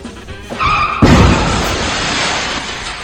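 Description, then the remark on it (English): A tire squeal rises for half a second, then a loud crunching impact bursts into a long, noisy rumble of debris that slowly fades, a classic car crash effect heard alone. “Where's the car crash?”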